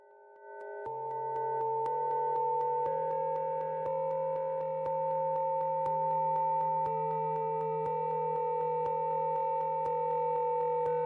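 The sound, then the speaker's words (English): About three months of brightness data from one star, rendered by Walkowicz as a 90-second piece of sound with reverb and other effects added: layered, steady synthetic tones hold like a reverberant drone, with faint regular clicks ticking roughly once a second throughout. No one speaks. “Walkowicz took that and did a little bit of production on it, using a bit of reverb and some other effects to get a slightly different sound.”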